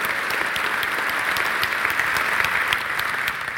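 An audience of men claps steadily throughout to welcome the speaker, a dense, even wash of many hands with scattered sharper claps poking through. The applause holds at a constant, fairly loud level with no voices.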